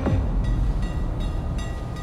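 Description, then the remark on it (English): A train rumbles steadily along the tracks with a deep, continuous roar, its wheels clacking over rail joints in a regular rhythm. It is fairly loud, with no voices. “Across Nazi territory, Jews, Soviets, and Roma were forced onto trains and sent to camps like Auschwitz.”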